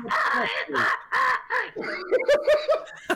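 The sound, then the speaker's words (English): A person croaks out a quick series of harsh, throaty raven-like caws, about six rough bursts in a row, fairly loud, shifting into higher squawking calls toward the end. “And you actually do say some stuff that the raven should understand, but it doesn't respond to you.”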